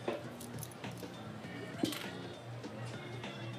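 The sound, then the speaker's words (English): Car keys on a keychain jangle and clink in short, uneven bursts, with one sharper rattle midway, over a steady low room hum and faint, muffled voices. “She left her car and her keys here last night.”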